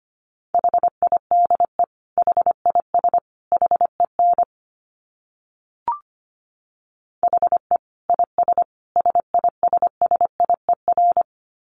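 Morse code at a brisk 25 words per minute: a steady mid-pitched tone keyed in rapid dits and dahs, two bursts of characters separated by a short pause with a faint click.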